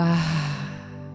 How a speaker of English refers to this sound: Taking a cleansing breath in through the nose. And exhaling out of the mouth, continuing to soften and release.